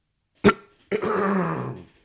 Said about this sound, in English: Sorry, not COVID cough, promise.